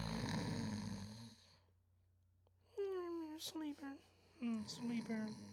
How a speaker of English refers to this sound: Next up, we got our sleepers, you know. We always got a cue to snore for that, so let's do that one time.